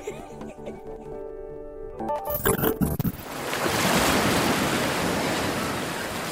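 Ocean waves roar in a steady, broad wash of surf beside a boardwalk after a few seconds of sustained tonal sounds, loud and continuous with no voices.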